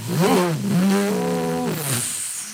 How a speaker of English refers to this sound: The drawbridge has seen its share of stunts. Just last month, a motorcycle made the same leap.